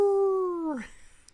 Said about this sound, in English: And then it goes into this dark night with a full moon with the howl of the wolf.